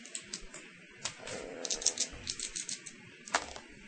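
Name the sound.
percentile dice being rolled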